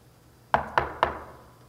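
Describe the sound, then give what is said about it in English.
Three firm knocks on a wooden door, evenly spaced, each with a short resonant decay, followed by quiet. “No, he showed up at your door and he knocked.”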